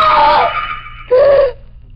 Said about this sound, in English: I was asleep in the grip of an old nightmare, an old fear that haunted my sleep. In my dream, there was a knife, a cold, cruel steel blade moving across my face, marking me, and I screamed.